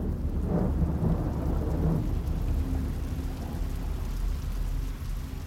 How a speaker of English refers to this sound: Sunday, June the 18th, 1815. The rain is relentless till the early hours. First light reveals a mud bath.